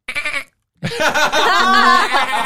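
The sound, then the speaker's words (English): A person's voice imitates a goat, giving a short quavering bleat, a brief pause, then a longer, louder wavering bleat held for over a second, clear. “What does a goat say?”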